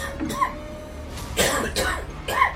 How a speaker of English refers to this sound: With great effort, he pulled himself up and collapsed on the bare planks of the floor, coughing on the dust and dirt choking the air.